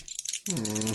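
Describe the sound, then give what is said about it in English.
A quick rattle and clatter of percentile dice tumbling as they are rolled for a sanity check, a burst of clicks lasting about half a second, then a short, steady, voice-like tone takes over. “No, actually, with percentile dice.”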